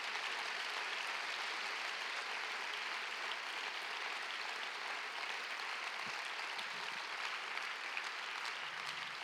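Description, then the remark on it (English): A crowd at a camp claps steadily throughout, giving a hand to God, a dense, even wash of many hands with no pauses or distinct rhythm and no voices standing out above it. “Let's continue clapping.”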